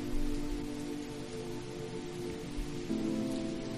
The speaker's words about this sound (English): watch as the rain falls against the glass. A symphony of rain against the window panes.